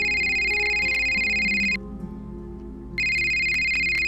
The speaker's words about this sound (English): And then my phone rang.